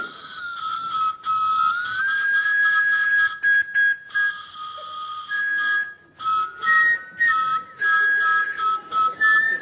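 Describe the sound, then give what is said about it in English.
A pie floater flavoured candy whistle being blown: a long, breathy, shrill tone that rises in pitch, then a string of short toots and held notes shifting between two pitches. No one speaks. “Unbelievable. How do they get that in a whistle?”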